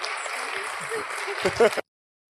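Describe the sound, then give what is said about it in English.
Audience applause for people who have come forward fills the first two seconds as a steady, dense wash of clapping, ending with a short burst of louder, lower sounds before it cuts off abruptly into silence. “Give these wonderful folks a round of applause for coming forward.”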